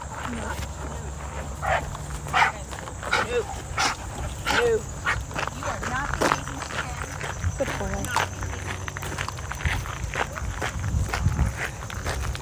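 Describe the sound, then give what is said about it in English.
Steady footsteps crunch along outdoors on a walk while a dog gives scattered short barks and yips, with faint voices murmuring in the background. “That other lady's having trouble with her dog too.”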